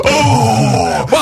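An audience lets out a loud, collective gasp that stretches into a sustained, wavering groan, cutting off briefly before one more rising exclamation at the end. No clear speech.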